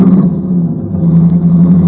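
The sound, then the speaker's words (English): A car engine roars, revving steadily as the vehicle pulls away quickly, a loud continuous motor rumble with no voices. “Get in and drive us away, quickly.”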